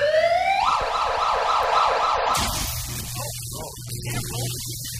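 A siren sound effect played on the radio: an emergency vehicle siren wails loudly, its pitch sweeping up and then warbling rapidly in a repeating yelp for about two seconds before cutting off into a low hum and faint rumble.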